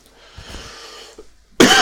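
A single sharp cough bursts out loudly near the end, preceded by a breathy, throaty rasp and quieter clearing sounds, with no talking.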